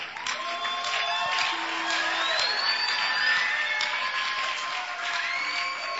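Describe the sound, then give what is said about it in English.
A church audience claps steadily and shouts out to welcome a reverend, with whoops and rising cheers layered over dense, continuous applause that stays loud throughout. “Your clapping should be exciting with some shoutings.”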